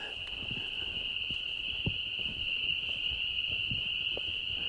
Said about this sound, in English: Can you identify more than one kind of frog here that we're listening to? Because those loud, familiar ones are the peepers. Right. I'm hearing mostly peepers. I was wondering if I might be hearing a different trill, but I can't be sure.